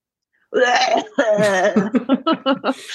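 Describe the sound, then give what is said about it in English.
A voice performs a raspy, strained groan that breaks into a series of short, rhythmic hacking coughs, fairly loud, imitating a dying zombie's wheezing cough. “Dying zombie coughing sound”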